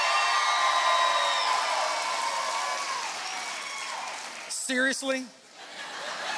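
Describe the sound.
A crowd claps steadily with scattered whoops and hoots over dense applause, which thins out and fades toward the end as a single voice briefly breaks in.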